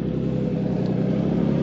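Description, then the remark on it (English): A lifted 1990s Jeep Cherokee's engine rumbles steadily as it drives around New York City, a deep, throaty drone that holds at a constant loudness for the whole short stretch, with no voices. “Just a huge, lifted 1990s Jeep Cherokee driving around New York City, making our planet warm.”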